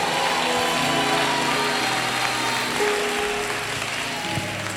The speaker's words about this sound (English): How many of you are location pastors? Somebody clap for every location pastor.